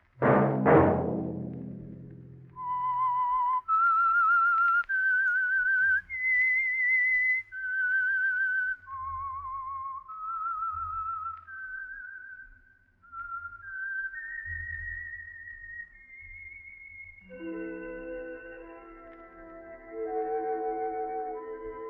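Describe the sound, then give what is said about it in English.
A person whistles the theme of the Signal Oil radio program The Whistler, a slow, eerie melody of long held notes that step up and down, following a brief loud musical hit, with soft instrumental backing swelling in toward the end. “Let that whistle be your signal for the Signal Oil program, The Whistler, which will come to you every Wednesday hereafter, beginning July 2nd, 1 week from this coming Wednesday.”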